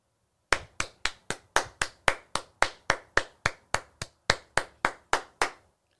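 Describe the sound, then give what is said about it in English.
A single person claps their hands in a steady, even rhythm, about nineteen sharp, crisp claps over five seconds, each one loud and evenly spaced, with no talking. “And the reason why I clap and I salute is because the police, for once, done their job.”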